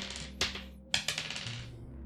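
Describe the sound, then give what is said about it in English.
Several ten-sided dice (d10s), rolled by tabletop game players, clatter across a hard surface in quick bursts of sharp, bright clicks and rattles, settling into lighter taps, over a faint low hum with no talking. “Everybody roll me a d10.”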